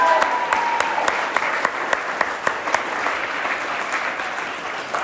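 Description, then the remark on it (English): A crowd breaks into sustained applause to welcome freshmen and new students at Wake Forest, many overlapping claps forming a dense, steady patter with a few sharper individual claps standing out, holding at a fairly even loudness throughout. “Yes, we can clap for them.”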